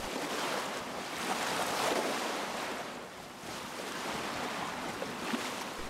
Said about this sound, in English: Cruising on open water may just be the world's greatest tranquilizer.